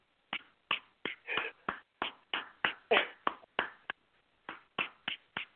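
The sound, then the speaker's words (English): A steady run of about fifteen sharp hand claps at a brisk, even pace, with one brief pause near the end. The claps are crisp and moderately loud, with no talking. “So I'm going to clap, and it might thank be you. 30 claps.”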